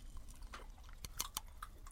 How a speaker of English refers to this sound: And you hear the fizzing. They are pop crystals.